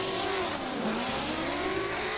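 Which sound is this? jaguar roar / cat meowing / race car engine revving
race car engine revving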